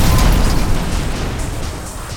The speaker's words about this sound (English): Lasers shoot out of the crocodile's eyes. They lance straight into the engine block of her van, and it goes up in a huge fireball.